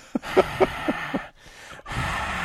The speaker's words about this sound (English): The breathing in the mic.